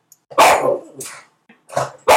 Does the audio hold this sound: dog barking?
yes